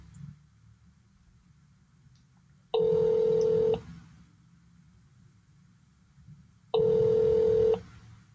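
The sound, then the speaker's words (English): Two sustained electronic telephone tones, each about a second long and evenly spaced several seconds apart, sound loud and bright over a steady low rumble like an idling engine, as a call is placed to the front desk. “We're going to call the front desk.”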